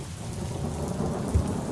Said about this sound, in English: It's a cold. Maybe not cold, but it's a rainy day in good old London town.